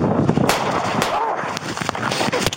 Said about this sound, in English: Shots fired! Shots fired! Officers returned gunfire, fatally striking 17-year-old